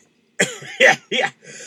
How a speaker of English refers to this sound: Excuse me. I had to clear my throat over there. There's a little dust over here.